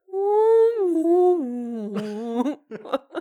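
A long, wavering whale call moans and slowly slides downward in pitch, then breaks into a few shorter, warbling cries near the end. Loud and close, with no talking.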